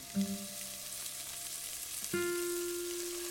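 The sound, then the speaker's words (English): Vegetables, a dash of turmeric and a splash of water sizzle in a cooking pot on a stove with a steady, bright crackling hiss and a faint tonal hum underneath. The sizzle swells slightly louder about two seconds in. No one speaks. “The competing flavors sizzle with each other, arguing over one another, contaminating one another.”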